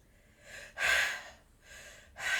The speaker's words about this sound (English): I get the sniffles a lot, so I actually bought tissues for my office now. I don't know what it is. Like, the second the microphone comes on, my allergies have been fine all day, and it comes on, and I'm like...